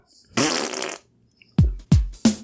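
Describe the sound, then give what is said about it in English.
A long, buzzy fart starts things off, followed after a short pause by three quick, punchy low blasts in a row, all loud with no talking. “Fart number one.”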